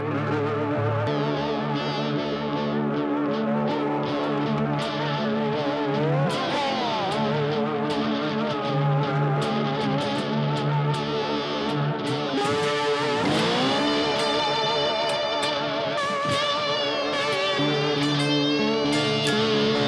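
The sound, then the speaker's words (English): Distorted electric guitar plays on its own, holding thick, buzzing sustained notes with sliding pitch bends and wavering glides, staying loud and steady throughout. “Throw my distortion on here.”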